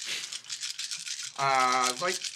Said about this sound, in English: That is a lot of dice. What the heck is going on here? That's me shooting 3 arrows.